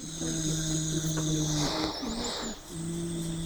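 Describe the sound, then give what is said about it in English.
A dog snoring: a steady, low droning rumble with a thin whistling nasal tone over it, briefly breaking off midway before resuming. No one speaks. “Karen calls her dog Hippo”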